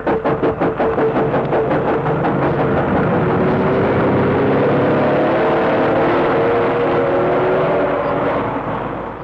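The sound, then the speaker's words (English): The engines of a couple of lorries waiting on a road beside an embankment chug in quick pulses, then settle into a loud, steady drone, the pitch climbing and dipping slightly as they rev. No voices are heard. “Waiting on the road by the side of the embankment were a couple of lorries.”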